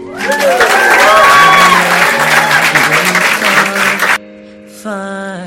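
An audience claps loudly for about four seconds, a dense steady wash of applause with a few voices mixed in, then it cuts off abruptly and sustained musical tones take over.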